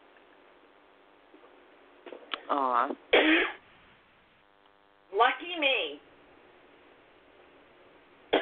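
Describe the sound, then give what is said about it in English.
A couple of harsh coughs and throat-clearing sounds from a person having a coughing attack break out over a steady electrical hum, with a few short spoken remarks from the same person between them. “And I have a coughing attack.”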